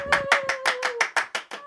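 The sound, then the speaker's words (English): Applause comes as a steady run of crisp, rhythmic claps, about five per second, with a thin sustained tone humming underneath for the first second. No one speaks. “Isn't it great to have an audience who can actually applaud instead of stuffed animals who kind of, you know, sit there and at least they smile.”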